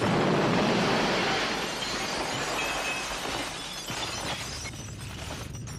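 Glass shatters loudly, followed by a dense, continuous clatter of breaking and falling shards that gradually thins out over several seconds, with no voices present.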